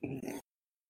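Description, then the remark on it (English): A single loud gulp, a throaty swallowing sound lasting under half a second with a brief catch in the middle, followed by silence. “Oh, for a second, that gulp, I thought that was in this show.”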